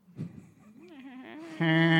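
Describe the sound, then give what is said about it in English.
A person imitates a cow mooing: a low, wavering vocal tone that rises and then bursts into a loud, buzzy, sustained call. “You know you wanted to moo when he was doing that too.”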